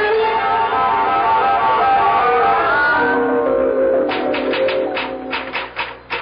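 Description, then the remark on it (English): A sustained, humming musical tone fills the first half; then a quick, uneven burst of sharp typewriter keystrokes clatters over it, fairly loud, about a dozen clacks in two seconds, as someone types a letter to the President of the United States. “Oh, I'm typing your letter to the President of the United States and a copy for the Premier of the Soviet and the Prime Minister of China.”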